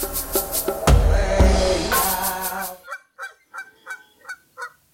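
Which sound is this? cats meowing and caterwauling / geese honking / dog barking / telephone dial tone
geese honking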